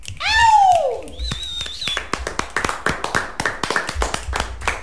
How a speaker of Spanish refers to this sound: Se chasqueó mucho aquí. ¿Ustedes chasquearon por allá? Demasiado.